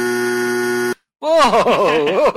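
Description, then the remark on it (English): A studio buzzer on a radio show drones loudly and steadily for about a second with a harsh, reedy tone and cuts off abruptly; after a brief silence, a voice breaks in with an animated exclamation. “Gotta buzz myself sometime.”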